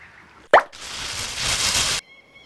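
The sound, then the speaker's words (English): A bottle falls from the sky into the ocean with a sharp, loud plop, then a steady rush of splashing water for about a second and a half that cuts off abruptly. No one speaks. “Hey, what's that falling from the sky? It's a bird. It's a plane. No, it's another bottle.”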